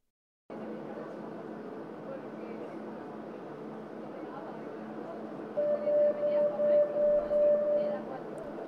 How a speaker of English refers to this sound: Welcome to the subway of the wonderful city of Barcelona, where I am on my way to see my favorite building in the whole world. From the hostel where I'm staying, it's a 10-stop trip with one transfer. It takes around 30 minutes.